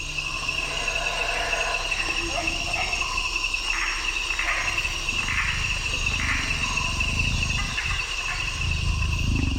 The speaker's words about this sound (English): Meanwhile, you'll hear the jaguar, you know, not too far off. But he had that rhythmic kind of combination of breathing and growl the whole night.